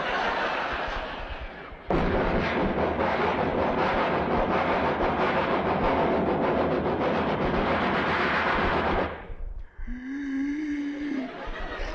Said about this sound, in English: This is a long train.